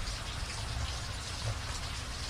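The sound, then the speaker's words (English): Steady rain falls throughout, a dense even hiss with soft low patter from drops striking a surface, continuous with no voices. “The rain is still happening.”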